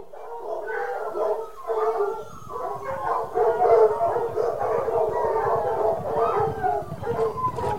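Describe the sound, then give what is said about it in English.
A pack of hunting hounds on a scent, baying and howling together during a hunt on horseback: overlapping long wavering cries with yips mixed in, loud and continuous for the whole stretch with no talk. “The pack has the scent, my lord.”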